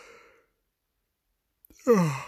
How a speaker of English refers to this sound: yeah, that's a good yawn. Not had one for a while, I don't think.